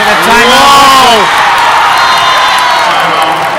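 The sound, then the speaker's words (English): A loud home crowd roars and cheers in an echoing gym during a basketball game as the Titans cut the lead, with a few voices yelling out at the start before the sustained din carries on steadily. “17 to go, and there's the They've crowd.”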